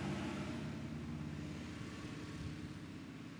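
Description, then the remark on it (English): A motorcycle engine drones steadily outside, a loud, rumbling roar with a low throbbing tone that eases off only slightly as it passes. No one speaks over it. “Just waiting for the car to pass. Motorcycle.”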